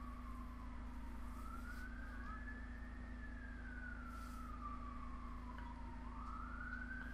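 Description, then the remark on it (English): Several emergency sirens wail outside, the tone slowly rising and falling over a steady low rumble of background noise, with no one speaking. “There's something kicking off around here. I can hear loads of sirens.”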